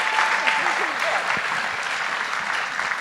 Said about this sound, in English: By the way, round of applause for all the doctors. It is National Doctor Day.